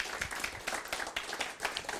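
A crowd applauds steadily, many hands clapping at once in a dense, continuous patter of sharp claps that holds at an even, moderate level throughout.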